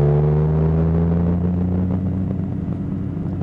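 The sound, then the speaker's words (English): A car engine hums loudly and steadily, a low droning rumble with a slight rise in pitch as the car drives along in traffic behind a Dodge Caravan and a black Porsche; no one speaks. “Okay, we're behind an exciting Dodge Caravan and another black Porsche.”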